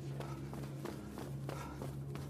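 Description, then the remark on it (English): Quick, evenly spaced footsteps of someone running towards the listeners, about seven steps in a brisk rhythm, fairly faint and set against a low, steady background hum. “As soon as I finished speaking, we heard a large metal crash from one of the more hidden areas and heard footsteps running towards us.”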